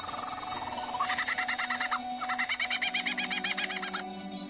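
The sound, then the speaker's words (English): A male bird mimics a kookaburra's laughing call: a loud series of rapid, rhythmic cackling notes in two bursts separated by a short pause, with no talking. “It's so convincing, it even fools the real thing. Though only outside the kookaburra's mating season.”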